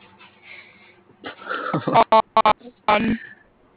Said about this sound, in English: Sorry, you cut off